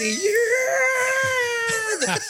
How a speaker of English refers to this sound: Yeah, not only do we have like Casio trumpets, we also have looped in screams. Like one person gets killed and they put in a fucking Howie Long scream.